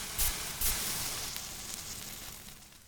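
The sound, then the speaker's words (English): The batter for the first pancake sizzles steadily in a hot pan on the stove, a constant hissing crackle with two soft thumps near the start and a brief sharp tap at the very end, no voices. “Pour in some of that delicious batter. While your first pancake is cooking, it's time to start sorting out toppings.”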